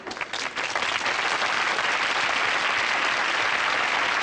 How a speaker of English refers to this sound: when Conrad Bain makes his first entrance, they put in the clap track